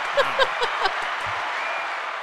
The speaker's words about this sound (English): Oh, I get applause.